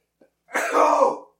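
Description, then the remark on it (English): A single violent sneeze: a faint catch of breath, then a loud, forceful, raspy blast that holds for under a second before cutting off, with no talking around it. “In case anybody's curious like what it sounds like when I sneeze, you're welcome.”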